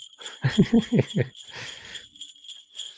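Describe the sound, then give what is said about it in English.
Sleigh bells jingle in the distance with a steady high shimmer, joined early on by a quick run of four or five low, voice-like bursts, then a brief rattling swell of jingling. “And then you heard sleigh bells in the distance.”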